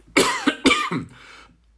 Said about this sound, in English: Going to have a cough here, sorry.